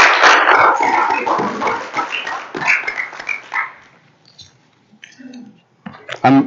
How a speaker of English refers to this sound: Can we give a big hand clap offering for those who led in worship this morning? Thank you.